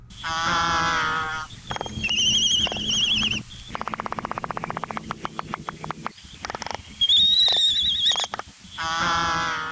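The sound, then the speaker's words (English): Laysan albatross (moli) seabird calls: loud, drawn-out nasal moans and whinnying cries with thin high whistles, broken by bursts of rapid, rattling clicks like bill clattering. No one speaks. “Professor Patrick Hart tells us more about the Laysan albatross, or the moli.”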